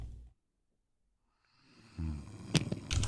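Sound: snoring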